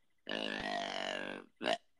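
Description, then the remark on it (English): A person voices a long, low, buzzing grunt imitating a 4-year-old deer, followed by a shorter second grunt after a brief pause; loud. “That's what a 4-year-old deer sounds like.”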